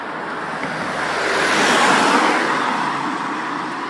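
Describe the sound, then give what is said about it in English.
A steady roar of road traffic at night, around 10:20 pm, swells to a peak around the middle as a car rushes past, then eases off slightly, with no voices, heard while walking home. “as a bunch of cars irksomely pass me.”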